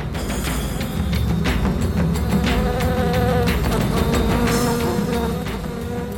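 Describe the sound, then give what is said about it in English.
A dense, steady buzzing of a cloud of many bees swarming overhead and stinging people, loud and continuous throughout, with a low droning hum and shifting higher whines as they move about. “No one can exactly tell you what it feels like to be stung by a bee.”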